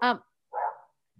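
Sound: dogs barking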